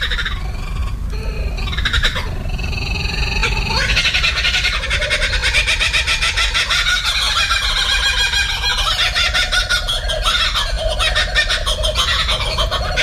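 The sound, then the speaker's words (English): Two Australian kookaburras in Melbourne, Australia, laugh back and forth in a loud, raucous chorus of rapid cackling calls that rises and tumbles without pause, filling the whole stretch with no voices. “I'm in Melbourne, Australia, and there's two Australian kookaburras laughing at each other.”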